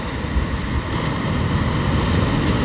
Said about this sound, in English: Like I said, now I'm sitting here by the ocean again. Ocean's a little bit calmer today. The waves aren't as big, but there's still a dozen or so surfers out there just enjoying the waves, riding the waves, floating in, paddling back out.